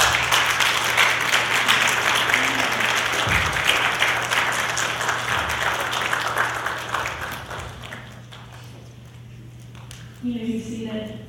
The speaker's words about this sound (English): Would the church stand and applaud and welcome these into the church?